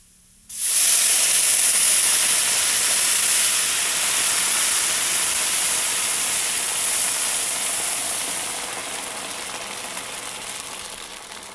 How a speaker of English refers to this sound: Alright, so our rice is a pretty good golden brown color, so now we're going to add the water.